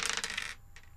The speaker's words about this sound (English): Here's me rolling the dice.